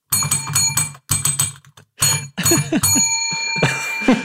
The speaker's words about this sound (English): I like muting my bell. Oh, did you mute it? Because I think it sounds your video funnier. Froze at the same time, and I wasn't sure what was happening. Oh, yeah, really? So the video froze, and I heard the bell all like muted and weird.